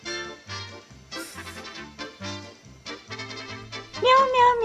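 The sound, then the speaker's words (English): A bouncy jingle of sung, rhythmic meows repeated over music, ending with a sliding, drawn-out meow; the cat sounds seem to be voiced imitations set to a tune. “This is meow meow meow meow meow meow.”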